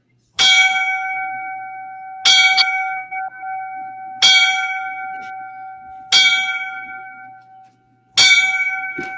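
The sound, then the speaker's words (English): A single bell rings five times at slow, evenly spaced intervals as a line-of-duty-death tribute to firefighters who died in Germany, each strike clear and loud with a sustained metallic tone that rings on between strokes. No one speaks. “So I'm going to give those guys the five bells.”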